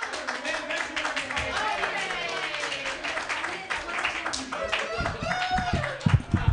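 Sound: small audience clapping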